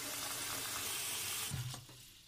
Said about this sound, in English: I don't have an ocean, but I do have a really big pot I can fill up.